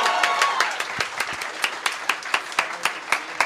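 A crowd applauds, starting as a dense burst of clapping that thins out over a few seconds into a steadier, sparser rhythm of individual claps.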